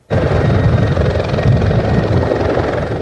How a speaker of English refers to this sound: A helicopter was dousing flare-ups this morning within the fire perimeter, a much different scene from yesterday when gusting winds fanned the flames.